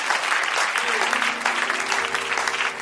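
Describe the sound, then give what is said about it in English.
A church audience gives a round of applause for a doctor, clapping steadily and loudly in a dense continuous wash of applause, with some faint voices and a low tone sustained beneath it. “You can give her a round of applause.”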